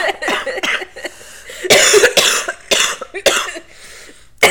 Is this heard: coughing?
yes